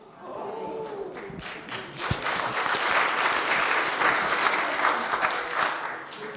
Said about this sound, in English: You say the applause wasn't for you, it was for your wife.